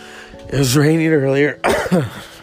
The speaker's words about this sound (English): I'm trying to shed this cough.